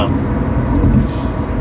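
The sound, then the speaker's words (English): A steady roar of street traffic, with heavy low engine rumble from passing buses and trucks filling the whole stretch without a break. “And, fucking traffic.”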